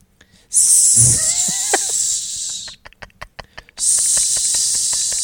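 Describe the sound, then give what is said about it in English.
A person imitates a snake, doing Batman as if he were a snake, with two long, loud, airy hisses, the first mixed with a brief voiced growl, separated by a burst of quick tongue clicks. “This is Batman if he was a snake.”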